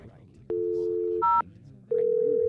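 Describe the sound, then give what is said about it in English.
A steady telephone dial tone hums, cut off by a quick dialing beep, then a second steady tone sounds after a short pause, all over a faint background murmur. “I created a phone.”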